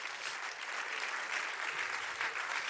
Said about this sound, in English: One more time, why don't we just give the Lord a hand clap of praise.